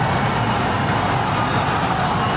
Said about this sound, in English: A minivan near the launch site was pelted with shrapnel as the rocket blasted off.